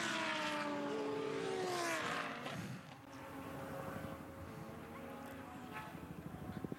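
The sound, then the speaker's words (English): A loud Audi R8 race car engine howls past at high revs at Mount Panorama, its pitch sweeping downward as it passes, then settles into a rougher, pulsing drone as it drives on, braking for Murray's corner. “Audi's at speed at Mount Panorama.”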